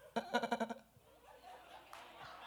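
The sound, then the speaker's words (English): A single loud, wavering sheep bleat with a rapid quavering pulse lasts about half a second, followed by quieter murmuring voices in the background. “Why do I hear sheep?”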